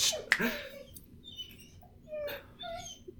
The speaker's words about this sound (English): Yeah, so dog just started whining, so I knew that might happen.